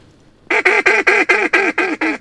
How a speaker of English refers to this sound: That was a pair of mallards. And this late in the season, they're paired up a lot. And it's hard to call them to convince them to come over here.